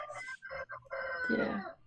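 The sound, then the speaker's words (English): A rooster crows, a loud, harmonic cock-a-doodle-doo broken into a few short bursts before a longer sustained final call, with no one speaking over it. “And that rooster definitely agrees with this.”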